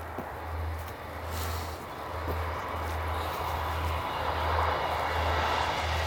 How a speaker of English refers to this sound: So I'm sandwiched now between the A36 on my right-hand side. I'm walking along the canal path, and a train just about to come through on my left-hand side.